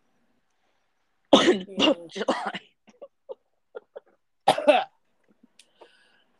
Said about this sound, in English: That's a bad cough there. It's your July cough. It was my July cough.